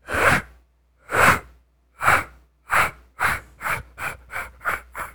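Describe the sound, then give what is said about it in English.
A voice imitates a scraping noise that a vehicle began making as it took off, with about ten breathy, hissing rasps that start slow and evenly spaced, then quicken and grow slightly softer toward the end. “As we take off, there's a bit of a noise that wasn't there before, and it sounded like a scrape, like a.”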